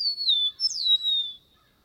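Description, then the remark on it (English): A bird sings a thin, high whistled song: a long pure tone slowly gliding downward, joined midway by a second note that swoops up and falls, then silence after about a second and a half. A field recording from the Macaulay Library at the Cornell Laboratory of Ornithology. “Perhaps even something Burroughs might not have thought would ever be possible, pairing his observations with the sounds of the songs he describes.”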